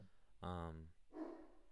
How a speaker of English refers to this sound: Ignore the dog.